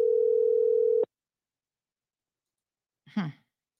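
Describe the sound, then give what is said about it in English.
A steady telephone ringing tone of a call to a woman who is not answering plays for about a second and then cuts off into silence, with no answer; a person sighs audibly shortly afterward. “So we've got lots of phone numbers for her, but she ain't answering none of them.”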